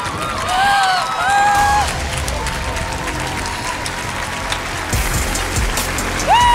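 A crowd applauds a surprise guest with dense, steady clapping that holds for several seconds, while a few high whistles or whoops rise above it at the start and again near the end.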